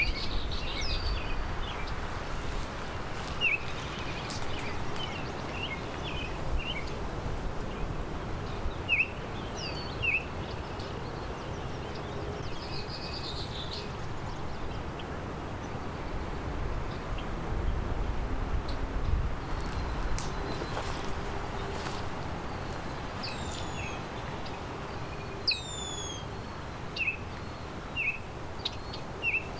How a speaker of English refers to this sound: Here's the oriole, Baltimore oriole.